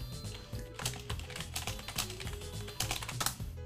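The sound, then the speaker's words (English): Rapid, continuous clattering of keys on a cheap computer keyboard, fairly loud, with uneven bursts of tapping and no voices. “It's this really shitty keyboard.”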